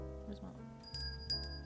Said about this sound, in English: Where's my little bell?